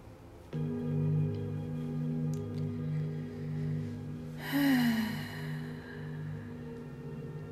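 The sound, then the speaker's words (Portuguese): A deep breath in, then a single breathy, sighing exhale rises up partway through, its pitch sliding downward as it fades, over a steady humming drone of sustained tones that plays throughout. “Respirando e soltando esse som, vocês vão sentindo essa energia subindo pelos seus pés.”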